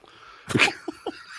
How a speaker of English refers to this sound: No, I want to blow my nose.